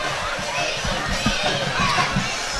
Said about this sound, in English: Beautiful night here at Briarcrest. Got a little bit warm, but it's the shade is covering the field now. We've got a nice, nice crowd here over on the Briarcrest side. The band is playing.